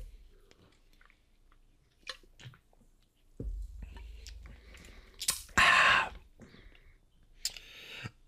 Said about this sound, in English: Hold on. Let me take a sip.